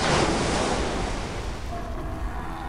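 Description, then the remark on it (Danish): A big wave surges in over a riverbed with a heavy, broad roar of rushing water, loud, easing slightly as it recedes, with a gusty windy hiss throughout and no voices. “Kort efter rejser sig endnu en bølge.”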